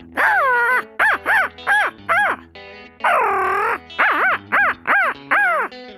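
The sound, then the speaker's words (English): A person imitates crow caws with their voice as a natural voice call: two long, drawn-out caws, each followed by a quick run of four or five short, harsh caws. The calls are loud, with no talking. “Crow call.”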